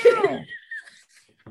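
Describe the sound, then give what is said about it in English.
A single meow from a cat named Sam Purr: a short, bright cry with a gliding pitch that trails off into a thin, high-pitched tail, followed by near silence and a faint soft bump at the end. “Sorry, did you hear the cat meowing? Cat is in agreement.”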